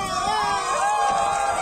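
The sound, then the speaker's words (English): A crowd of more than 100 people, family members and friends from two Seri communities, cheers and shouts steadily at a historic reunion on Saps beach, an ancestral meeting place, in wind and midday sun: many excited voices overlapping in a continuous, loud roar of high-pitched calls and whoops with no break. “With the wind kicking up dust around them in the midday sun, family members and friends from the two communities cheer and embrace at the historic reunion.”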